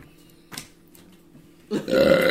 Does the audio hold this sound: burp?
yes